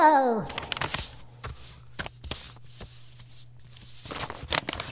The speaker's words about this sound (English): Can you name that sound? That's right. Zaga is folding up the letter and putting it in an envelope.